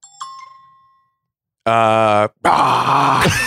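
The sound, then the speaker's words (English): A short chime rings and fades, then a voice imitates a T-Rex roar in two loud bursts: a drawn-out, tonal groan followed by a longer, harsher, raspy roar. “It's a dinosaur. T-Rex.”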